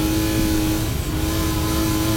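A car engine roars steadily on a long country road, loud and continuous for a couple of seconds, with a constant droning hum as if revving while accelerating. No voices.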